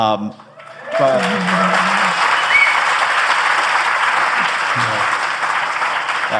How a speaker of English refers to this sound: Pause for applause.